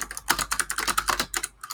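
Rapid, continuous typing on a computer keyboard, a dense run of crisp clicking keystrokes with no voices.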